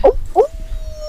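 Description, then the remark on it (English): A person imitating a dog's howl, as if howling at the moon, with short, mid-pitched yelping cries, three quick bursts separated by brief pauses, fairly loud over a low background rumble. “You should be doing the howling.”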